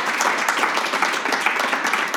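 A crowd applauds steadily as a vote for Beto O'Rourke after a debate, many hands clapping at once in a dense, continuous patter that stays fairly loud and even from start to finish.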